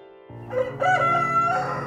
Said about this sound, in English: Rooster, get thee back into the tempest.